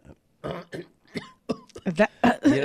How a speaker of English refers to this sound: have you ever had that thing in the back of your throat that makes you want to gag and cough all the time and it just won't go away?